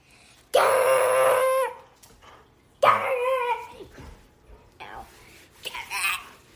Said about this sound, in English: playing tug of war with our dog. I wish you guys could see.